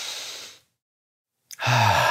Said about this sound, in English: All right, welcome back. Take a deep breath with me.